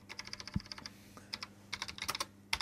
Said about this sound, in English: That typing just sounds like what it reminds me of. Whenever I hear someone typing, I instantly think of GoldenEye on the N64, whenever like right. you'd like very slowly follow Boris to a computer and there'd be that sound.